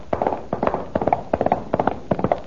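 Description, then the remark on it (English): The hooves of Don Diego's horse clatter as it approaches, in a steady, repeating galloping rhythm, quick clusters of hard knocks recurring at an even pace and fairly constant loudness, with no voices present. “I see Don Diego's horse approaching.”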